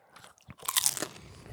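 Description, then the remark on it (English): A crisp crunch of someone biting into crunchy food, a short burst of crackling texture followed by softer chewing noises, with no talking. “I heard the crunch from here.”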